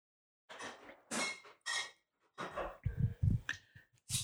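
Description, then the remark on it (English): A front door being locked: a series of sharp metallic clicks and rattles from the latch and bolt, several quick bursts in a row with no one talking. “Lock the door. I am black. We lock all doors of where I'm from.”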